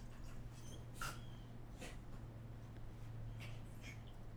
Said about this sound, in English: You okay over there, dog? Look at her go. She's gone, traveled all the way across the rug on her face.